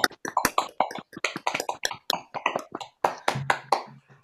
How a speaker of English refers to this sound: Guys, can we just unmute our computers or whatever and just give everyone a bit of a round of applause?